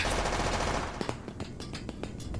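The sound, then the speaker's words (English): A steady roar of noise gives way to a string of sharp, rapid cracks of machine gun fire, fairly even in rhythm, with no voices. “I think the gunfire stopped.”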